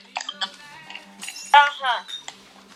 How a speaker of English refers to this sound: Stop breaking the glass. Quit it.